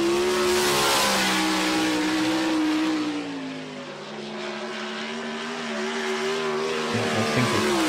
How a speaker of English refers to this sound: This is my son. He's 19 years old, and this is his 410 sprint car. Yeah, and these things are terrifying. And this is at my track, by the way. I own this track.